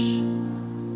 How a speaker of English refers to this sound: We are the church. Yes, we are the church. Let's put a round of applause for that.